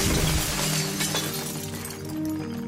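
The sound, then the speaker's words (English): Crockery smashing: a loud burst of breaking ceramic with a bright crash at the start, then scattered clinks and rattling shards settling and ringing out over a couple of seconds, no voices. “Well, that's another set of tableware lost.”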